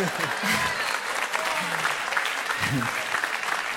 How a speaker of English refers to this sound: Okay, I'll talk to the one that clapped.